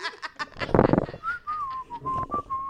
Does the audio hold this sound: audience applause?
no